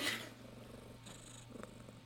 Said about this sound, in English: She's the mouthy one. Hold on. We'll see if we can capture her purr.